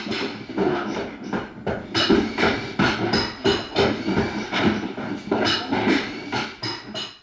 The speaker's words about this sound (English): Right, hammers and electric saws cutting and all of that stuff, right? That's what it sounds like when a contractor carpenter is building a house.